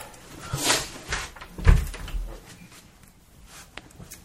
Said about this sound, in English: Sorry, I just had to close the door.